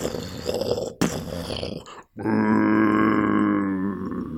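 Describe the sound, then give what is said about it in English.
A Big Daddy, the huge diver-suit creature with drills for hands from the video game BioShock, groans in a soundbite from the game: a rough, deep growling rumble, a brief break, then a loud sustained droning moan with a steady, whale-like tonal quality. No one speaks. “Actually, that was a soundbite from the game.”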